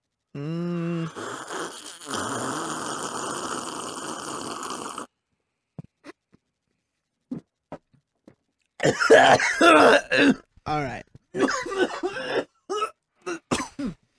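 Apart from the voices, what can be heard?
coughing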